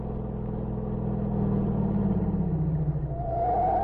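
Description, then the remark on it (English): A car engine rumbles steadily, its pitch sliding down as the car, driven to General Luigi's home, slows, like a car pulling up and easing to a stop. No one speaks. “There, M secured a car. Then he and Ivan drove to General Luigi's home.”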